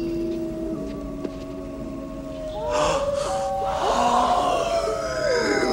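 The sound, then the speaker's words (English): Wolves in Transylvania howl in long, wavering tones, first a steady low cry, then several more voices rising and overlapping into a loud, eerie chorus with no one speaking. “Bloody wolves chasing me through some blue inferno.”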